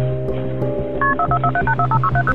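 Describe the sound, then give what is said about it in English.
Telephone keypad tones beep in a quick run of about ten short, evenly paced two-note blips over a steady low hum, with no voices, as 911 is dialed to call paramedics to a home in Milledgeville, Georgia. “Only moments earlier, Clark had called 911, asking paramedics to come to his home in Milledgeville, Georgia.”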